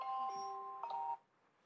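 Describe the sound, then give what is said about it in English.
A bright electronic chime rings out, two sustained tonal notes with a second strike around the middle, steady and fairly loud, then cuts off to quiet after about a second. “And I just want to tell you that, is my timer?”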